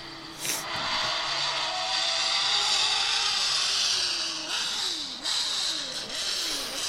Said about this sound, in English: What is that? Is he doing a burnout? Is that just really slow? Oh, he was. He's doing a filthy burnout. Oh, yeah. The Pink Pig. The new version. Another RSR.